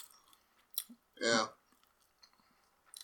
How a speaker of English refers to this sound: Once you hear those chewing sounds... Delicious.